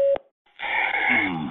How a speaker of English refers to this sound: Please record your message. Record after the tone.